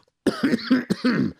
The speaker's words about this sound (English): Why do you always do that? Well, because I gotta clear my throat.